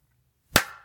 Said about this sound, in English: I feel the aggression as your hand slam against my fucking cheek.